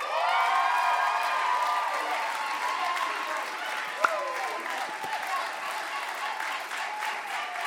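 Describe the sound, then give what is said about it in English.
A crowd applauds steadily for several seconds, a dense wash of clapping with scattered cheers and whoops rising above it, holding a fairly even loudness throughout. “But listen, can we just put our hands together”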